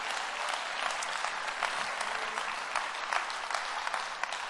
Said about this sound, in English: Come on, clap your hands and praise Him right now.